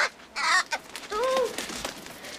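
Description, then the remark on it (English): A big black pet crow named Soot caws several times, loud, harsh and raspy, in a quick irregular burst of three or four calls with no talking underneath. “He's got, like, a pet crow. Like a big black crow.”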